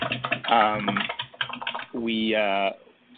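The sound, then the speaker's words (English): Rapid computer keyboard typing clacks along in the background, blending with a voice that hums and speaks over it on a muffled, tinny call line. “Actually, your typing I think is quite loud in the background there.”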